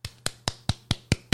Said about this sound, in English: Those are some claps.